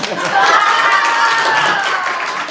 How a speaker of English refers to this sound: No clapping during prayer. Nope. No clapping during prayer. So we should clap now.